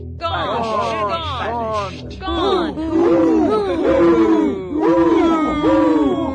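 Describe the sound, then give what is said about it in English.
A crowd of many voices shouts and cheers at once while throwing up their caps as Coriolanus is banished in a scene from Coriolanus, loud and overlapping, swelling in waves for several seconds with no single voice standing out. “Shouting and throwing up their caps.”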